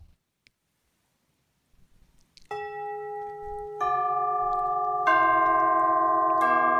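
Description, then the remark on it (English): Tubular bells ring out in four successive loud, metallic strikes, each adding to the lingering chime of the last, after a brief near-silent pause at the start. “So that's tubular bells.”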